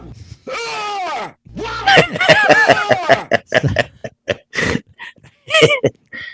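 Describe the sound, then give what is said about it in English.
A man's voice imitates a woman screaming: loud, high wailing cries that swoop up and down in pitch, breaking into a string of short, choppy yelps toward the end. “And that's not really me screaming. That's me imitating Mary screaming.”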